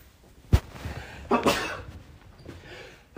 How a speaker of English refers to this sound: Oh, Jesus Christ. Sorry, just sneezing on the fucking podcast now. It's not COVID, I assure you. Just sneezing.